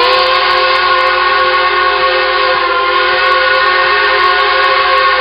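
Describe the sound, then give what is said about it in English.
The whistle of the Polar Express steam train sounds one long, loud, unbroken blast as the train departs, its rich chord of tones holding steady for several seconds, with no voices. “The Polar Express let out a loud blast from its whistle.”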